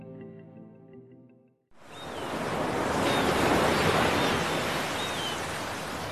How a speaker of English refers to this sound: Wind. Crashing waves. Seabirds calling. Sounds this 32-year-old doesn't take for granted.